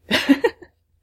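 A single sneeze bursts out, a breathy, hissing rush followed by a couple of quick voiced pulses, then cuts off into silence within about half a second.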